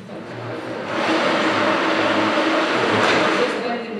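A cash counting machine at a counter desk in the Bank of England whirs as it counts old paper banknotes being exchanged for new polymer ones: a steady, continuous thrum that swells after a second and holds, a dense mechanical rush with a low hum beneath, amid faint background murmur.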